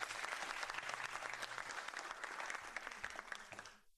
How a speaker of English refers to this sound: I was very excited for DC Pride last year, and the fact that they're bringing it back is even more exciting, especially with all the other books that we're getting along with it. Let's give it a round of applause, shall we?